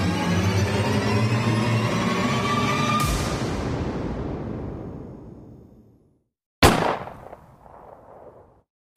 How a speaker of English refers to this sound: Shocked by the echoing blast, I looked around.